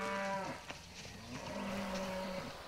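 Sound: cattle mooing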